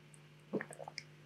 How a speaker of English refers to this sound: For the audio listeners, I just took a sip of water, obviously.